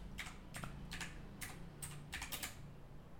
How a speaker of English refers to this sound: What are you typing? What is happening?